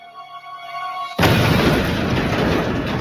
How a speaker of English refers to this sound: The explosion was the most gruesome yet, instantly decapitating Thomas Moser.